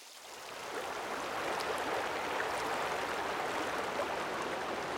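The Lyell Fork, a mountain river fed by melting glaciers, rushes and cascades through Lyell Canyon: a dense, continuous wash of flowing water that swells in over the first second and then holds loud, with no voices.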